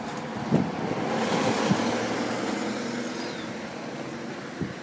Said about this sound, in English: It's amazing to me how noisy it is. Walking on the roads and stuff. You can already hear the birds though. Tweeting away.